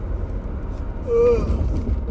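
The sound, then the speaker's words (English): A short, voiced yawn: a brief drawn-out vocal tone that rises then slides down, against a steady low rumble in the background. “Why the fuck am I yawning?”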